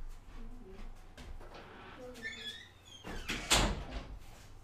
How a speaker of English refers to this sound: All right, sorry about that. I'll do some magical editing, but the kid was just at the door pounding, seeing me at the microphone. That happens.